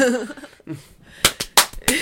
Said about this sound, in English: More slapping. Your hands are going to be red. That's okay. I actually burned myself this. So each slap that I give for the sound effect is really fucking painful.